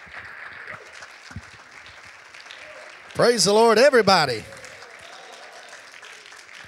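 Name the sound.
audience hand clapping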